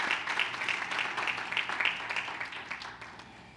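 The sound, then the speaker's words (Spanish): Steady applause for the Lord from an audience, a dense wash of many hands clapping at an even level for a few seconds, with no voices rising above it. “Dale fuerte ese aplauso al Señor en el nombre de Jesús.”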